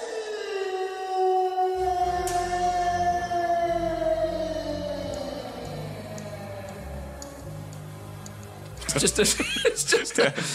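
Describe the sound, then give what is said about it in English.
A long, sustained howl glides slowly downward in pitch while a low, pulsing synthesizer backing enters and gradually takes over, ending in a sudden burst of busier, clattering sound. “Is that it turns into the music backing from having been a howl. I mean, it is a howl.”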